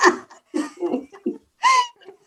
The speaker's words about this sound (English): Oh, he's going to be embarrassed that we caught him coughing.